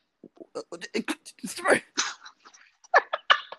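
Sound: sneeze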